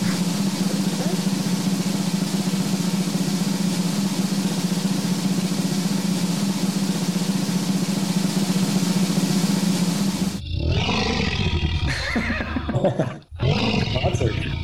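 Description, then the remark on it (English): A person vocally imitates the MGM lion's roar: a long, sustained, gravelly growl, breaking into a few wavering, strained cries near the end. “I gave you the MGM lion there”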